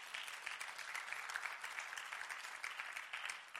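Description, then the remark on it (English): A church audience claps hands together in sustained, dense applause as a clap offering to the Lord, many overlapping claps forming a steady wash of sound that stays even and fairly loud throughout. “Come on, give the Lord a great clap offering.”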